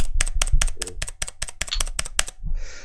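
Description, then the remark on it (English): A bare mechanical keyboard switch, not mounted in a keyboard, clicks rapidly and repeatedly, about a dozen crisp, bright clicks in a steady rhythm, loud, with no voices, ending in a short soft rustle. “That was the bare switch, not the keyboard as it exists.”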